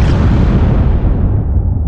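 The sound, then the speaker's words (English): A massive atomic bomb explosion roars loudly and continuously, a dense low rumble filling the whole clip while its brighter, hissing edge gradually fades away. No voices are heard. “And then there is an atomic explosion.”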